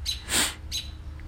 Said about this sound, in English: God damn it, Bird. God damn it. You just gonna keep talking over me, bro? You just gonna keep talking over?